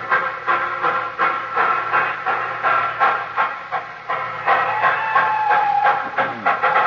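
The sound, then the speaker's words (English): A steam train starts off from a station with a crowd at Christmas. It chuffs in steady rhythmic bursts of hissing steam, with a high whistle-like tone briefly rising above the busy, continuous rumble and clatter. “Well, you know, that was a jolly happy crowd there at the station, wasn't it?”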